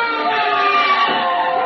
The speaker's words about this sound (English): Hey, sirens. Yeah, police.